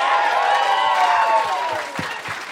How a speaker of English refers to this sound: Nothing wrong with asking for applause. Nothing wrong with that. Nothing wrong with that.